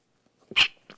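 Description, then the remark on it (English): A single sneeze: a short intake followed by a sharp, loud, hissing burst, then a faint breathy sound trailing after. No talking. “I'm in a sneezing mood here. You have to bear with me if you would.”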